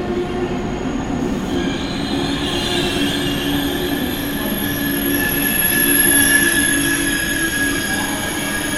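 A train's wheels squeal loudly against the rails as the brakes grind on, a steady high-pitched metallic screech over a dense rumbling roar, continuous for the whole stretch.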